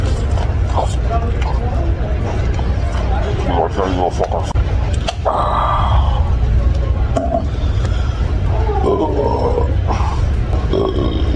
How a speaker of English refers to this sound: And he squirts it on the sandwich. Yeah. Fucking half pound of roast beef. Yeah, the rest of the noises you're gonna hear are just him inhaling this food.